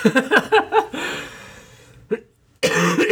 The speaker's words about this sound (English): I apologize for that cough. I'm going to try and edit out some of the coughing and sneezing, but I'm not going to have a 100% success rate.